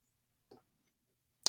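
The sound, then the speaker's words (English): A timer being set for a five-minute turn ticks softly, two short, crisp clicks about a second apart, the second a bit sharper, against near silence with no one talking. “1 second, I'm setting up the timer.”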